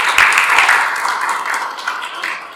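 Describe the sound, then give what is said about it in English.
A crowd applauds for the maker of a handmade TARDIS, many hands clapping in a dense, steady wash of bright, crackling noise that holds fairly loud throughout and eases off slightly toward the end, with no voices rising above it. “I think round of applause for our friend who made that.”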